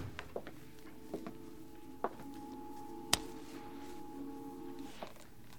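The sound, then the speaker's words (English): The door of the back room of a pool room clicks shut with a sharp latch sound midway through, after a few soft footsteps or knocks, over a steady low hum. “He closed the door.”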